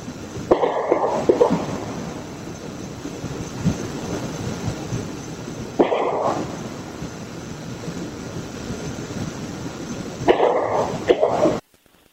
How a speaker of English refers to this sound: He pulled the 30 seconds of when these gunshots were fired. And I think we have the audio here.